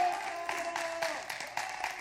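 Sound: audience hand clap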